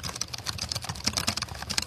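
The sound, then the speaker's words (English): Quick, irregular tapping on the keyboard of a hacked X210 laptop from around 2008, a steady stream of crisp key clicks with no voices, lasting just under two seconds. “Could you type a little bit for me with those keys?”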